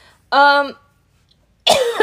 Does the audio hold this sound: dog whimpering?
no